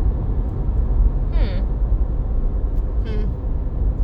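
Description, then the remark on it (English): A steady, loud low rumble of road noise fills a moving car's cabin throughout as the car drives back to a house, with two brief higher-pitched tonal chirps rising above it partway through. “We're in a car that's coming back to my house.”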